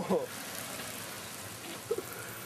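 Steady rain hisses evenly throughout, recorded in 2008, a soft wash of falling drops, with a couple of brief, faint voice fragments breaking through near the start and end.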